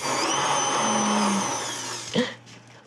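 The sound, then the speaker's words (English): A kitchen blender mixing frosting whirs steadily with a dense, high-pitched motor whine for about two seconds, then cuts off with a brief clunk and fading rattle. “but after blending for a bit, it'll combine.”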